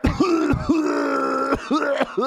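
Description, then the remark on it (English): A person's voice imitates a parrot's raspy cough: three harsh cough bursts linked by strained, groaning croaks, fairly loud, with no talking. “The parrot started coughing and making the exact sound.”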